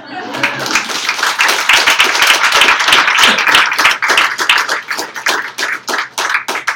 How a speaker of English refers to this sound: And after, I thank you for your thunderous applause.